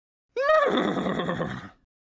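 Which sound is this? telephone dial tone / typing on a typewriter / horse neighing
horse neighing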